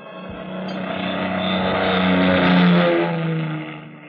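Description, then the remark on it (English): A loud, steady airplane engine drone with a low humming tone swells over a few seconds and then begins to ease off, as a big plane flying from New York to Las Vegas, Nevada, slowly glides down out of a clear starlit sky at 11:30 p.m. “It was 11:30 p.m. when the big plane slowly glided down out of the clear starlit sky.”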